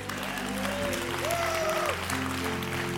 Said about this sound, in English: Amen. Amen. Come on, one more hand clap for Jesus.